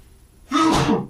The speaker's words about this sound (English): I have to sneeze.